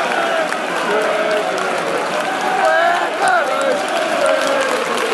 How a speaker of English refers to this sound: and the crowd giving good applause off the pitch. There we are.